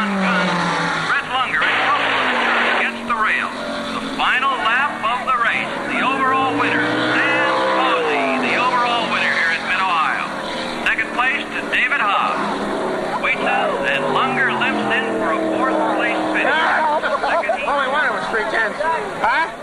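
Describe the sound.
Race car engines roar steadily throughout, loud, with pitch rising and falling as cars jostle for position, while a voice talks over the din. Brett Lunger in car number 6 is trying to overtake the fifth-place car.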